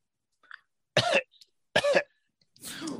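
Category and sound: vocal imitation, imitated coughing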